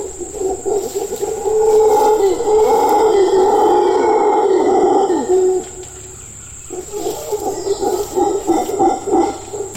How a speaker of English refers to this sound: It's often hard to see howler monkeys in the forest canopy, but their sounds, which travel for miles, are unmistakable.